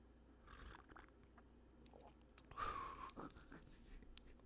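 A single quiet slurping sip of hot tea (Sleepy Time Vanilla by Celestial Seasonings), a short airy draw with a faint liquid whistle, set against soft rustling and low background noise.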